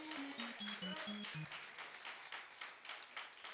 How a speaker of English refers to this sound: Clap your hands and say yeah.